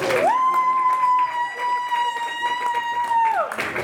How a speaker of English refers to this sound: so round of applause for him.